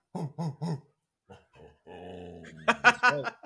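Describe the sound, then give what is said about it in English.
A dog trained to bark and growl on cue gives three quick, loud barks, followed by a short pause, a low sustained growl, and then a burst of excited, higher yelping barks. “Yep, I've trained him how to do that now. When we get fired up.”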